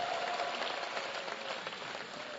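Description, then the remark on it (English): An audience at a church service bursts into steady, dense applause, clapping for themselves, many hands clapping at once in a loud continuous wash that barely dips over a couple of seconds, with no voices standing out. “Well, clap for yourselves, everybody, for being part of this service.”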